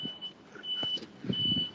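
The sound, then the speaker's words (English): Road traffic from two lanes in Taiwan, heard from a sidewalk, rumbles with low engine noise rising and falling, while a high, steady reversing beep from a truck sounds in two long stretches over it. “If you can hear car noises, it's because there's two lanes of traffic.”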